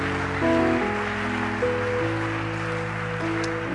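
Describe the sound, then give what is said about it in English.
An audience claps steadily, a dense, even wash of hand claps lasting the whole stretch, with sustained low musical notes shifting in pitch underneath. No one speaks. “Oh, I think you can clap better than this.”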